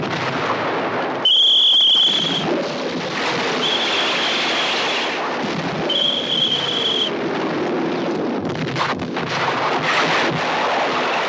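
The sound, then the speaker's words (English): Dense, roaring battle noise from a Kubrick film scene with explosions and booming artillery, punctuated by high whistling shells streaking overhead, as soldiers advance through hills and barbed wire, all blended into a loud, continuous wall of sound with no one speaking. “The camera follows alongside Douglas as he works his way forward, blowing his whistle, traversing through hills and barbed wire with piercing sounds and explosions all around him and his men.”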